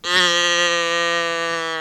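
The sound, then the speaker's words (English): A person imitates a cow's moo: one long, steady, droning call held for about two seconds, fairly loud, with no other talking around it. “Why don't you moo us in?”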